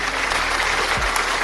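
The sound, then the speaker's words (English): A steady burst of applause from an app's sound effect library, many hands clapping at once in a dense, continuous patter that holds at an even, fairly loud level for the whole moment, with no voices. “They got the claps.”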